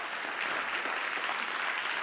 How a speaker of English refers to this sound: Why don't you give them a big round of applause?